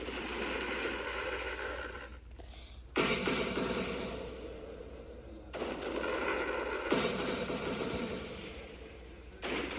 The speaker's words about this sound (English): Fireworks going.